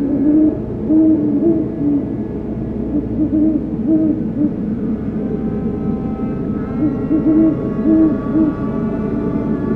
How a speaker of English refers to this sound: In October this year, I've spent a few nights out around dusk in an area I know great horned owls frequent, hoping to finally get recordings of this species in person.